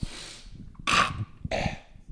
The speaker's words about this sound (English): Hang on, I gotta sniffle my nose. I'm so close to getting a cold, you know what I mean?